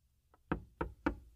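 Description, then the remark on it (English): Three firm knocks on a wooden door, evenly spaced, preceded by a faint lighter tap, with a low steady hum underneath. “Doors open. Come on in.”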